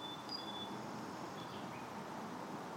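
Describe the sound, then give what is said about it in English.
A few faint, thin bird whistles drift over a steady, low wash of traffic, the calls brief and high-pitched against the constant background hum. “There's all of those different sounds arising out of the silence. The birds and the traffic.”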